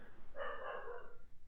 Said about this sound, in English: What do I do with this dog? Do you have a chew toy for it? This dog has so many chew toys. It's got a billion chew toys.